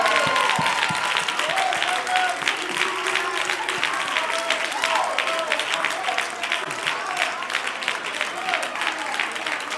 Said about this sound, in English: Let's give them both a round of applause.